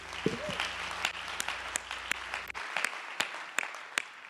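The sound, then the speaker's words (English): An audience claps their hands in a steady wash of overlapping applause as praise to the Lord before being seated, with sharper individual claps standing out at an irregular rhythm and a faint low hum underneath that cuts out midway. “Give the Lord a great big hand clap of praise before you're seated.”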